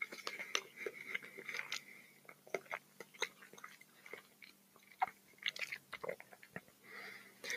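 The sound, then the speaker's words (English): Wet chewing sounds of someone eating hot food, with irregular crunchy clicks and smacks, continuing steadily throughout at a quiet level with no speech over it. “Oh, I shouldn't have eaten. I should have eaten this from the start.”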